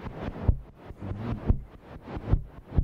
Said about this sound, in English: So we'll get a kick from this. I quite like just this, actually. Yeah, I made some noise with it, like TV static as well. I love that clicking. Now we got two kicks and a snare. There you go.